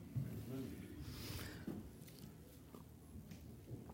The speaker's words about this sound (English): My mouth just ran dry, so I just needed a sip of water there.